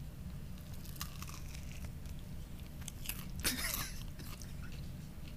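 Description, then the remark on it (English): Crunchy biting and chewing into a breaded chicken sandwich with Cheetos and mayonnaise, with a few crackly bursts and one louder crunch near the end over a steady low background hum. “Get that crunch.”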